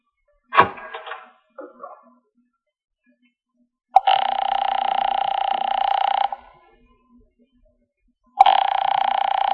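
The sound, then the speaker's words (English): A payphone in a hallway rings in two long, loud bursts separated by a pause of silence, preceded by a sharp clunk and a brief rattle. No one speaks. “It's ringing.”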